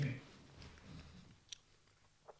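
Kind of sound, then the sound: food or drink, chewing food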